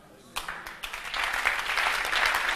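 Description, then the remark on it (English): A crowd breaks into clapping that starts with a few scattered claps and quickly swells into steady, dense applause, the many hands blending into a continuous crackling roar. “Oh, clap for Jesus, clap for Jesus, clap for Jesus.”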